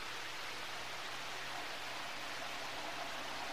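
Driving rain pours down at night at a beach colony outside Los Angeles, in a dense, unbroken hiss that holds at an even, moderate level throughout, with no voices or other sounds breaking through.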